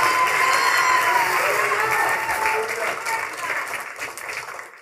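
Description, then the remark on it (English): A standing audience in an auditorium claps and cheers loudly in praise to God, in a dense, continuous wash of applause with scattered shouts and whoops, holding strong for several seconds before easing off slightly toward the end. “Come on, clap your hands, all ye people. Shout unto God.”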